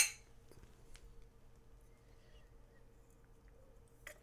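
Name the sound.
glasses clinking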